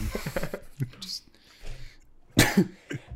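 A sharp, loud cough bursts out, followed by a smaller second hack, after a few seconds of quieter throaty breathing and murmuring.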